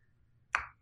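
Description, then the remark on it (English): A single sharp, quiet click, a computer mouse button being pressed once to open an online article, against a near-silent background, with no talking. “Okay, I found it and I'm clicking on it.”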